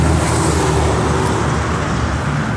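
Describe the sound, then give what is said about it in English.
A truck full of cows rumbles along the road, its low engine drone steady and loud under a wash of road noise, easing slightly as it moves on. No one speaks. “The cow, that truck's full of cows.”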